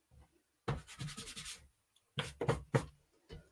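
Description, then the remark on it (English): Dry scratchy rubbing of pastel on a rigid board with a coarse tooth like very fine sandpaper, in two bursts of quick back-and-forth strokes, with a short pause between and a faint stroke at the end. “Not only is it rigid, but it does have a tooth that's coarser than pastel paper.”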